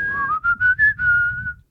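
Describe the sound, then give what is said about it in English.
A shrill whistle carrying a short TV theme tune, a quick run of rising and held notes with brief breaks between them, heard alone over a faint low rumble. “Oh, see if you can guess which song this is.”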